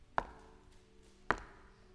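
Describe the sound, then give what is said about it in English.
Two distinct knocks on a door, spaced about a second apart, each a sharp thud with a short woody ring, and no voices in between. “behold, I stand at the door and”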